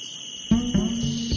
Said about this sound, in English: Cicadas in Singapore, on the other hand, are active all year round, and the noise of cicadas can be heard all day long. When you get a bunch of them together, the sound can be ridiculously loud, to the point of causing permanent hearing loss.